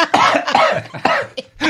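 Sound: coughing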